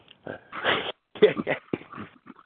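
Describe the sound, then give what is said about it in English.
Dogs trying to run out of a yard whimper and snuffle in a quick run of short, uneven bursts, some breathy and snorting, others higher and whiny, separated by brief gaps. “I'm talking to the dogs trying to run out of the yard.”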